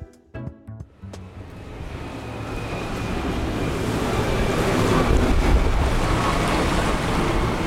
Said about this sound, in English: In the heart of London's financial district, a yellow and red boat run by the delivery giant DHL travels up and down the River Thames every day with packages from all over the world.